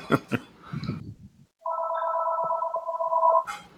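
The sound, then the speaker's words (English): A landline telephone rings in a house with a steady, buzzing electronic tone that lasts about two seconds, preceded by a few sharp clicks and faint rustling; the ring is fairly loud. “Oh, look, I'm getting phone calls now.”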